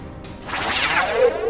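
A sci-fi grappling hook fires with a bright, sweeping whoosh that dives from high to low pitch, swirling and wavering, then settles into a steady sustained tone; no voices.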